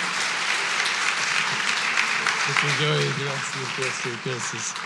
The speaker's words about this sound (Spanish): So, hermano, un aplauso por favor por nuestro misionero